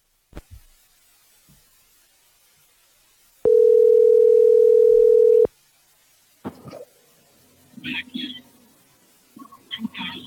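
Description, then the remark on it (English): One steady, loud ring of an outgoing telephone call to a business owner about his upcoming grand opening, lasting about two seconds, preceded by faint clicks and followed by muffled voices starting to talk. “So let's give him a call.”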